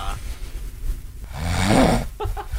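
A sleeping person snores up close: a quiet breathy stretch, then a loud, raspy, rumbling snore that swells for about a second before trailing off into softer breaths.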